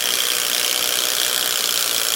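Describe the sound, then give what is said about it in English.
A swaging machine shaping the nose of a pen or pencil runs steadily, giving off a continuous bright, hissing mechanical whir with a faint high whine, even in loudness throughout and with no voices. “And then we use a swaging machine, which is a very it's a layered machine which basically shapes the nose of whatever pen or pencil we require.”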